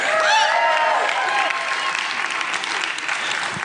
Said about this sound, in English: Thank you for that rousing applause. Not that I deserve it by any stretch.